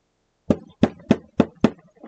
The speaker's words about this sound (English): listen, that knocking. How funny it sounds.